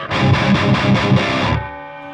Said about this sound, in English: Do you find the noise gate, as well as removing the noise, do you use it to kind of tighten up that kind of chugged riff as well, or do you just have just to get rid of the noise when I'm playing it?